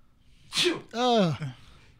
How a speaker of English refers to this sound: Oh, I got to sneeze. Hang on.